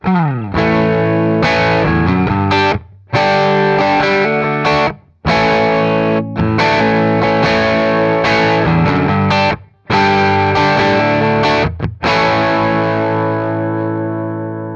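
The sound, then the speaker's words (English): A distorted electric guitar, played through 50 feet of guitar cable, plays loud chords and runs with a dark, muffled body, a fizzy, harsh top end and slightly reduced gain, broken by a few brief silent gaps before the final chord rings out. “So it got fizzy on top end, and like, it's weird, it got darker but also fizzy, and it just sounds bad.”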